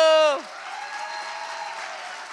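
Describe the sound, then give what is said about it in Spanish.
A raised voice cuts off abruptly, giving way to a dense, steady wash of crowd applause that continues evenly for about two seconds, with faint cheering woven through the clapping. “¡A ver ese aplauso!”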